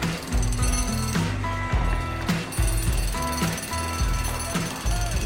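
Loud, continuous jackhammer rattling at a construction site fills the whole stretch without pause, with a song's low, steady melodic bass line and music running underneath the pounding.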